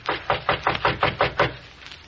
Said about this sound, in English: We'll knock once on this private door here and then go in.